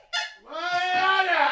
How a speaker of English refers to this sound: You're really like trying to squeeze the last drops of juice out of those slide whistles